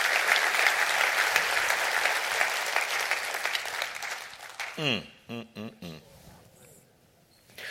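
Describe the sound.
A church audience claps together to rejoice in a loud, steady wash of applause for several seconds, then it fades as a man begins speaking.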